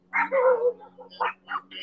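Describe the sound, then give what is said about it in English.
A small dog yaps in a quick series of about five sharp, high barks among jet skis at a jet ski park, over a steady low hum in the background. “Look, that little bike here, look, the little doggy jacking away.”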